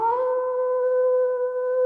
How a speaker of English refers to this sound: Oh, the distant howl of a wolf signals that it's time for a segment I like to call Cryptic Confessions, Tales from the Dressing Tomb.